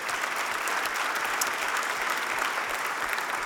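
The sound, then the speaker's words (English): A large church audience applauds steadily for the gift cards donated, a dense wash of many hands clapping at once, sustained and even for the full few seconds with no voices standing out. “And I know it can feel weird to clap if you gave a gift card, but you're clapping for everybody else who gave one, all right?”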